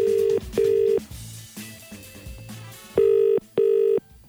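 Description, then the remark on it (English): A telephone ringback tone purrs in two double-ring bursts, each pair of short buzzing tones separated by a pause, fairly loud and clear over faint background noise. It plays in a recorded phone call to a business about advertised bar work, before the call is answered. “Shall we listen to the phone call with me and hi to Manny yesterday?”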